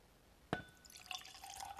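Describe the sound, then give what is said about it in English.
A Glencairn tulip-shaped whiskey glass clinks sharply and rings, then Lagavulin 16 whiskey trickles and splashes into it in a short pour, quiet and intimate with no talking. “Glencairn's a tulip-shaped glass for drinking whiskey when you...”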